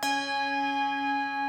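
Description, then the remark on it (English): A single strike of a large bell, its clear tone ringing on with many steady overtones layered above a strong low hum, sustained and loud with no voices. “The bell can actually vibrate in a lot of different ways. When you ring it in the normal fashion, like I've just done, it can, you are exciting a whole lot of different modes of vibration.”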